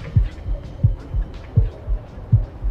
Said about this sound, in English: Damn, my heartbeat. Man, that's what it's supposed to do. No, my shit beat too fast.